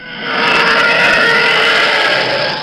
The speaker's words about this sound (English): You can clearly hear a TIE fighter coming. Oh, yeah. And you can clearly hear a TIE fighter flying away. Yeah. Like, it's a very distinct sound, much like the airplanes in, you know, historical situations.